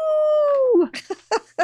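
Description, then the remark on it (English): A person does a wolf-howl imitation, mimicking Dwight's Howling at the Moon t-shirt: one loud, sustained note that slides downward for nearly a second, followed by a few short, choppy vocal bursts. “At 21 minutes, 34 seconds, we see the famous Howling at the Moon t-shirt that Dwight is going to wear to pick up the ladies.”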